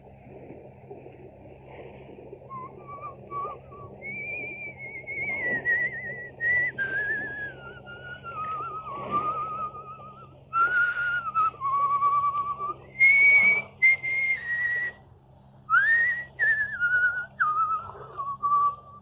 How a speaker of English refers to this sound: He will pass the word Blackstone and whistle Annie Laurie.